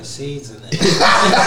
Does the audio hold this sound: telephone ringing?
no